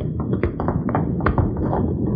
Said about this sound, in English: Don't stop here. Come on, that landslide's almost on top of us.